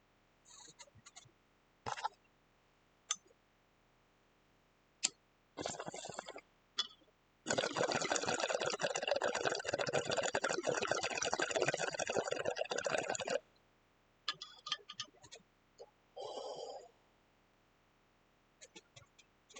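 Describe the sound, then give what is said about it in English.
A few sharp lighter clicks, then about six seconds of loud, steady bong water bubbling as someone takes a hit of grape shine marijuana, followed by a scattering of short coughs and breathy sounds. “If you hear click, click, bubble, bubble, or cough, cough, grow the fuck up.”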